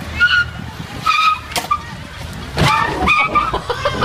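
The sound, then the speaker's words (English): Car tires squeal in repeated bursts over rumbling engines, with a few sharp impact-like transients, as cars skid and bump into each other like bumper cars in the middle of a parking lot. “Now they're playing bumper cars in the middle of a parking lot.”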